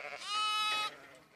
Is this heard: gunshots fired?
no